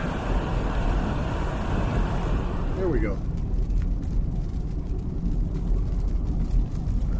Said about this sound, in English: And we're heading into town in the noisy car. Let's see if I can get that dialed down a bit.